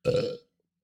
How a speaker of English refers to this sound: Sorry. I burped and something almost came up.